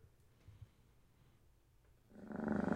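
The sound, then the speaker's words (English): In a music video, after a couple of seconds of near silence, a loud cat purr rumbles in with a steady, rapidly pulsing vibration that continues to the end. “Oh, he starts the purring every time.”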